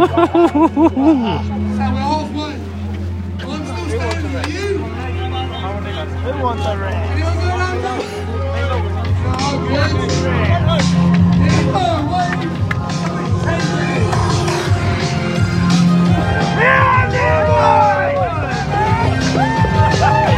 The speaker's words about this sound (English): Cacophony of noise that begins this race that really does get you right in the chest.